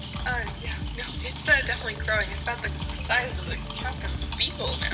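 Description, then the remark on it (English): Steady running water pours and splashes for several seconds as a creature drinks, moderately loud, with chirpy, warbling tones and soft rhythmic thumps layered over the flow. “The more water they drink, the more they grow.”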